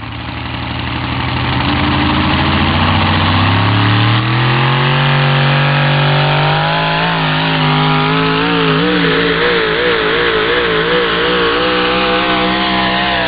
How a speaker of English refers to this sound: The engines in this class making in and around 1,800 horsepower. The most popular motor in the class is the Sonny Leonard truck pull motor. It's a hemispherical-headed motor built specifically for modified four-wheel drive truck pulling.